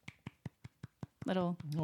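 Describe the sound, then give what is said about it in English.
About seven soft, evenly spaced claps, a light golf clap, sound at a steady pace for just over a second before a voice starts talking. “Little golf clap for parents everywhere who've gone through any of these things, because it's all like so like normal.”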